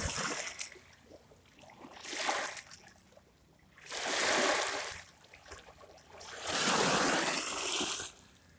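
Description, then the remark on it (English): Water laps in gentle, recurring washes, each swell rising and fading every couple of seconds with soft splashes, moderately quiet, with no voices. “So, let's just listen to the sounds of the water a little bit longer.”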